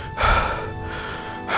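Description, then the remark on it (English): A steady, thin, high-pitched ringing tone hangs over muffled, rumbling noise, like the ear-ringing effect after a blast. The tone stays constant and piercing while duller sound swells and fades beneath it. “It's not like, it's like that was worse, and you're like, you just hear the ringing in your ears, and he's just like.”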